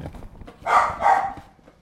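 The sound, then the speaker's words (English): A dog barks twice in quick succession, two loud, broad bursts about a third of a second apart, over a quiet background with faint low rumbling. “Just going to keep barking until he leaves.”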